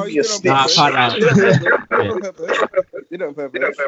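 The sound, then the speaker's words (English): Voices come through a call line with a smeared, doubled quality, as if the speech is repeating back on itself in a continuous muddled echo for several seconds. “Someone has an echo now.”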